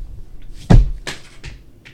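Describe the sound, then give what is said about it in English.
A vape gets knocked off a table and falls, landing with one sharp thud, followed by a few lighter clatters and taps as it settles. No one speaks. “I don't mean to knock your vapes then off. Then quit hitting the table.”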